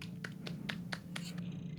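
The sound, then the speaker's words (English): A quiet golf clap: about six soft, light hand claps at an even, unhurried pace, sitting over a steady low background hum with no voices. “Golf clap.”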